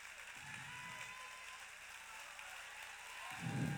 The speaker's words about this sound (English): Everybody clap while I take a drink.